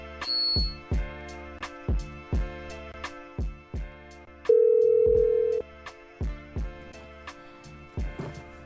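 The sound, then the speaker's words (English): An outgoing phone call to someone's father rings out on the line, with one sustained electronic ringback tone over a steady, punchy beat of rhythmic thumps. No one speaks. “So before we get up out here, we're going to call my dad.”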